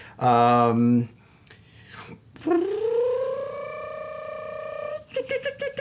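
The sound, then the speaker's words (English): Foley of a code being pushed in to lock a time capsule: a loud, low buzzy tone for about a second, a pause, then a long whine rising in pitch, ending in a few quick clicks. “That's pushing in the code to lock it.”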